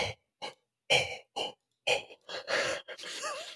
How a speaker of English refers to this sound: Oh, deep breathing exercises. That's... Yeah, I'd get everyone calm.